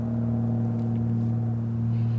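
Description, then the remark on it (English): A steady, low droning rumble of an airplane passing overhead, heard outdoors, with a constant humming tone and even loudness throughout and no voices. “I'm sorry if you can hear that airplane. I'm sitting outside recording this episode for the first time ever.”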